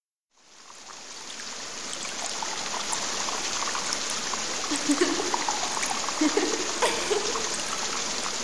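flowing

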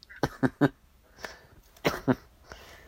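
coughing

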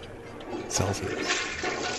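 toilet flushing

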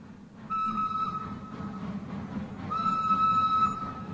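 train arriving

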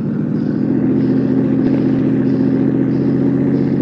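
car engine accelerating

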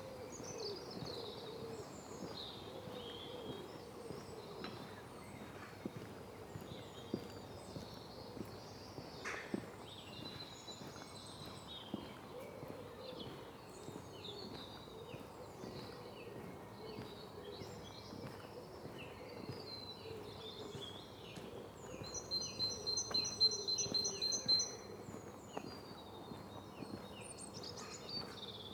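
pigeons calling

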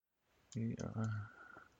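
typing on a keyboard

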